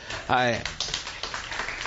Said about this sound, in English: I'll let him know that you clapped for him.